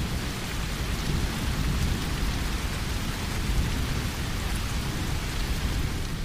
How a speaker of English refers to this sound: Or you could have a thunderstorm.